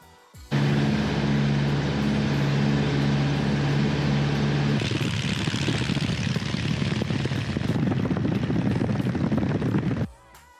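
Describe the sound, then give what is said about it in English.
A small white propeller plane with blue stripes and cameras on its tail and left wing: its engine roars loud, a steady droning hum that shifts into a rougher, rising buzz as it powers up for takeoff, then cuts off abruptly. “So at this point in the video, there's a white plane with some blue stripes on it taking off.”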